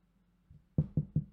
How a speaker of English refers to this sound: God bless him. Knock on wood.